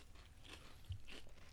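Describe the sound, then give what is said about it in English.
People eating: crunching and chewing of food, with two distinct crisp crunches standing out over a low, steady rumble; no talking. “Yeah, because we're eating now. We're eating and chewing.”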